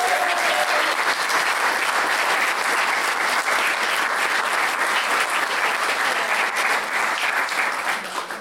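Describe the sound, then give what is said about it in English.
An audience claps steadily throughout, a dense, loud wash of many hands beating together in a continuous crackle that tapers slightly at the very end. “Round of applause!”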